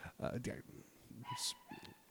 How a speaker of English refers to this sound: Scrump, we're talking about Disney. Stop barking. He's barking. That's Scrump the dog.